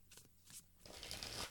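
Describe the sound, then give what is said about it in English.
Tarot cards being shuffled, a few quick riffling bursts building into a longer, louder crisp flutter of stiff cards. “while I was just shuffling while you were looking up your cousin on Facebook, Strength popped out”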